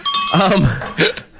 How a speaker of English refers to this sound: My bell stuck for a minute. What the hell?